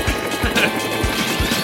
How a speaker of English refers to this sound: Definitely sounds like a helicopter.